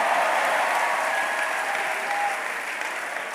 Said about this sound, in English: Somebody give the Lord a mighty hand clap of praise.